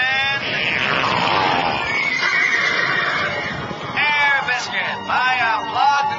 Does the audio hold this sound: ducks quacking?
no